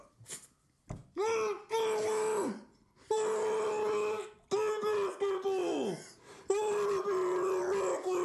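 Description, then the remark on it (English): A muffled scream into a basketball towel: four long, strained yells at a steady, fairly high pitch, one sliding downward as it fades, separated by brief gasps and pauses. “It feels like you need to scream it into a towel.”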